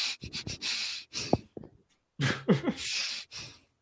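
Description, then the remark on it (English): A person does bellows breathing: quick, forceful nasal breaths come in short bursts, a rapid run of sharp huffs, a brief pause, then another series of fast, noisy inhalations and exhalations through the nose. “Bellows breath. It's a series of quick intakes followed by one long intake of air through the nose.”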